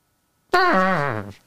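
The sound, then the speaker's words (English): A voice imitates a horn with a single loud, buzzy blast that starts mid-pitch and slides downward, sagging lower before cutting off after about a second, with no other sounds around it. “Just give us a little horn. Just a horn solo.”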